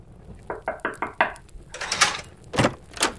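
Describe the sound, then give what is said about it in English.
A quick, even series of five knocks on a wooden door, followed by a few louder, brushier clunks and rattles, with no one speaking. “someone's at the door.”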